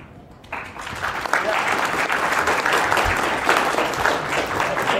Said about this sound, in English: That applause was a little wimpy, but it's good.